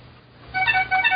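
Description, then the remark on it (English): A computer phone's text message alert: a quick run of bright, high electronic chime tones, played twice in a short melodic pattern, clear over a faint background hiss with no talking. “No, that was my computer machine phone. Yeah, text.”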